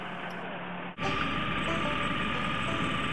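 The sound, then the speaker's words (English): A mole plough laying 12-core single-mode fibre cable across grass churns with a steady, loud diesel roar and broad mechanical rumble; after a brief dip near the start, the heavy engine noise swells and holds constant throughout. “This is the mould plough in action, as you can see.”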